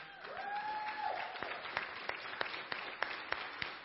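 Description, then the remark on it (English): An audience applauds a band with a steady, dense wash of clapping. A few sharper individual claps pop out, and a short high whistle rises over the crowd near the start. “And I want to applaud all of you.”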